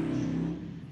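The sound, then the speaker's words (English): A big motorcycle engine drones past outside amid heavy traffic, a steady low rumble that holds for a moment and then fades as it moves away, with no one talking. “He just had a big old motorcycle. There's massive traffic out there.”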